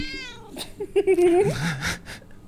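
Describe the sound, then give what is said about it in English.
A cat named Shinka meows insistently, a few drawn-out, wavering cries that bend up and down in pitch, moderately loud, with some faint background noise between them. “Shinka is very on mic right now. She has so many opinions.”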